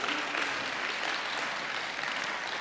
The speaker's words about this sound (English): I am not sure if that applause is for Duncan or for the United Pentecostal Church or for you guys, but it's all of the above, right?